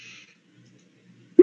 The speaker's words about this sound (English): Perception, empathy, difficulty 8, reduced by your aspects. Dice.